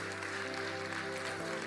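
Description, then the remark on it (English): An audience at a church service claps after a sermon in a dense, steady wash of applause, with sustained low musical tones, like a held keyboard chord, running underneath the whole time. “Come on, let's clap”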